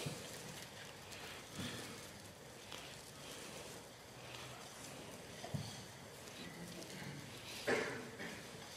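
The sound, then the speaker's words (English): Soft, steady papery rustling of many thin onion-skin Bible pages being turned at once as people turn to Matthew chapter 9, with a few sharper flips standing out here and there and no one speaking. “I love the Bibles, and I love hearing the pages turn.”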